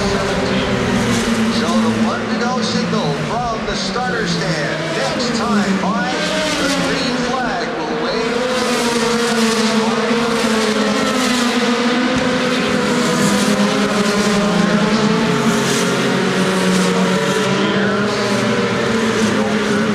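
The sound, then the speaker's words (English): Loud, continuous roar of racing engines with rising and falling pitch sweeps as cars speed past during the Indy 500 at the Indianapolis Motor Speedway, layered over a busy crowd and announcer voices throughout. “we're headed out to the Indianapolis Motor Speedway for the Indy 500. Enjoy the sounds of the race,”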